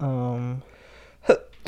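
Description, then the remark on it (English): A drawn-out voiced "ahh" builds up, then a short pause before sharp, breathy sneeze bursts erupt, the last one loudest and cut off at the end. “I'm going to sneeze in a second.”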